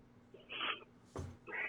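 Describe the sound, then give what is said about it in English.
A person imitates an owl with three short hooting calls in quick succession, fairly loud, the middle one briefest, over a faint background hum. “Hey, somebody say you sound like an owl.”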